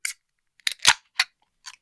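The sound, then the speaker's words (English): A can of raspberry marshmallow sour is cracked open: a few short metallic clicks and scrapes, then a sharp pop with a burst of hiss, followed by a couple of softer clicks, with no talking. “Straight from the can?”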